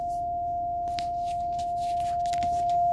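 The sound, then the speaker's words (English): A car's front parking sensor alarm, triggered while pulling up to the front of a garage, sounds as a single steady, unbroken mid-pitched electronic tone that holds for the whole stretch, with faint low rumble beneath and no talking. “So that was my front parking alarms. Whenever I get close to something, like the front of my garage here, I park in the garage since my wife's away.”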